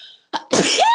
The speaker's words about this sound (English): I'm going to sneeze.